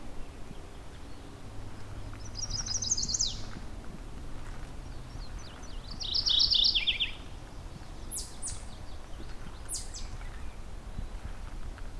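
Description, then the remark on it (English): A mourning warbler sings two short, rolling phrases a few seconds apart, fairly faint, followed by a couple of sharp high chips over a low background rumble, beside a road in the Currie Tract, Halton region. “Here we go, mourning warbler.”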